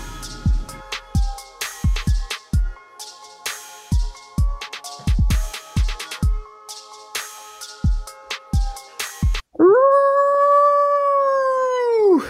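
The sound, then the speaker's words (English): A dog named Noodle lets out a long, loud howl that rises and then slowly falls, coming right after the bouncy Waking Jake show music jingle with punchy drum hits. “You like that, Noodle? Yeah, you do, because you're a dog.”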